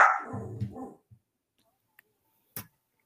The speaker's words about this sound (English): The dog's got lots of opinions tonight.